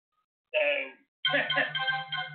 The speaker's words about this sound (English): Yeah, my phone's going off. That was a little unprofessional.